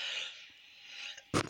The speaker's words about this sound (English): Excuse me, I'm sorry. I didn't mean to cough straight into the microphone.